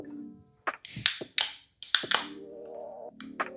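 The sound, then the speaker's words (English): Several sharp metallic cracks and hisses of drink cans being popped open, a quick burst of loud snaps and fizzing bursts with brief pauses between them, with a low hum running underneath. “You want to crack these open, bro?”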